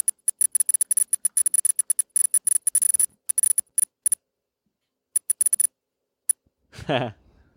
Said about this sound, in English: Did you change your NVDA beeps? That sounds different than mine.